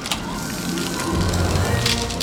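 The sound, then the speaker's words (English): A steady, sustained hiss of a superhero's Arctic spray, used on melting butter sculptures in the Butter Sculpture Hall of Fame, lasts about two seconds at an even loudness, with a low rumbling, crackly texture underneath and no voices. “I, with my Arctic spray, will save the day.”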